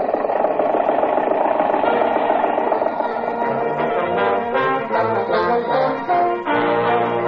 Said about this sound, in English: Confound your stinking motor car.